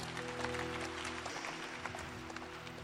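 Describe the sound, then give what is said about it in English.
A church audience claps steadily throughout, a dense, continuous patter of many hands, with a sustained low musical tone humming underneath for the first second or so. “Clap for them as they go.”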